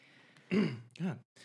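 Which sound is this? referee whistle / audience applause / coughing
coughing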